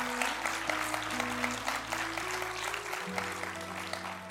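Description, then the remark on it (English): An audience claps and cheers steadily for a high school senior who programs the lights, a dense wash of many hands with a sustained hum of crowd noise beneath, holding at a fairly even loudness throughout. “You can cheer about a high school student making a big difference.”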